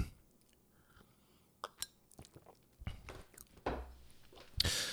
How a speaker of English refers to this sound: It's like you want to make sure that you are consuming it the way they intended you to drink it. Just so let me take another real quick sip.